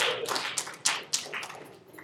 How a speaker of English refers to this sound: Let's give a round of applause to our ugly serpent, our beautiful Eve. And, okay, Adam.